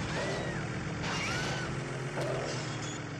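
Loud, continuous video game car engines from a 1997 PC driving game rumble and whine, with pitch sweeping up and down as vehicles rev and race, layered over a dense, noisy background.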